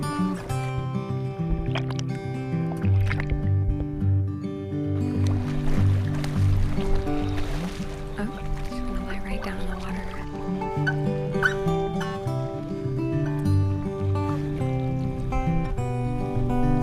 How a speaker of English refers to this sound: Splashing.